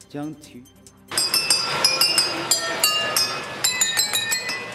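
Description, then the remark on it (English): After a brief voice at the start, a quick run of bright, ringing glass tones follows as a model train in a Hamburg museum plays a melody on nearly 3,000 wine glasses, struck one after another at varying pitches, with a faint mechanical rumble beneath. “And a museum in Hamburg has found a musical way to set a Guinness World Record by setting up a model train to play a melody on nearly 3,000 wine glasses.”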